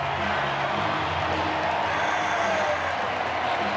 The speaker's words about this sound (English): He gets a hanging slider and hammers it into right center field. And Wrigley Field is roaring here for Matt Mervis.